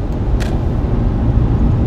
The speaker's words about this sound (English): Woo! It's tight. Traffic's insane today. It's pretty intense. There's a lot of traffic in Spokane that does not use turn signals, for one.